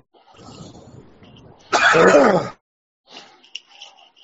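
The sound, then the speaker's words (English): A single loud, sharp sneeze bursts out, lasting under a second, with quieter voice-like murmuring before and a few faint sounds after. “Bless you”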